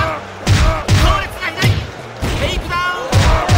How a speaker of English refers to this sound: And for me personally, the other thing that drove me absolutely mad were the goddamn gunshot sound effects.